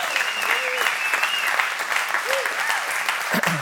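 Steady, dense applause from a sizable audience fills the whole stretch, with scattered whoops and cheers rising above the clapping.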